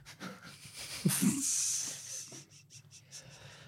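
A single sharp cough bursts out, followed by a long, wheezy hiss of breath and a few faint puffs trailing off. No one speaks.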